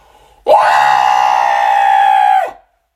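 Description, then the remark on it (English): A single loud, sustained scream of pain lasting about two seconds, a voice imitating an anguished cry, intense, then cutting off into silence; a recreation of the scream let out when a kneecap was popped back into place. “And I'm going to quickly recreate the scream that I let out.”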